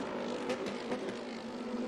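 Lamborghini race cars in the 2015 Lamborghini Blancpain Super Trofeo roar past at Virginia International Raceway with a loud, steady engine drone and brief surges in pitch, with no voices.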